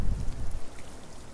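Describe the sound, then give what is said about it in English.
Steady heavy rain from a thunderstorm in Budleigh Salterton hisses across the whole range, with a rumbling low-end swell in the first half second that fades into a constant, dense patter. “It's still chucking it down, so I found some shelter.”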